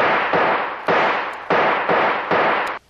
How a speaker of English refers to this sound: Stand back, you fool. The only chance is to shoot the lock off that door.